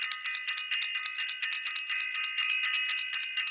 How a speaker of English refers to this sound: I want to do this. I want to ring the bell.